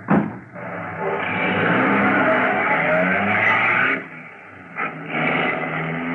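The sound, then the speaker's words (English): A taxi cab's engine turns over with a sharp start, then roars steadily, briefly easing off before revving up again as the cab pulls away. “Get into the cab and start it.”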